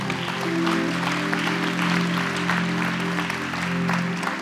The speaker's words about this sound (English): Can we give Kat a big round of applause?